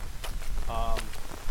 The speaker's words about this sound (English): And then you start to hear like the tinging noise of like rain on metal.